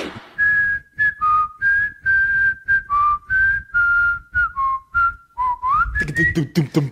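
Someone whistles a tune, a string of clear, pitched notes in short phrased bursts that rise and fall, close and fairly loud, ending with a noisier rush at the very end.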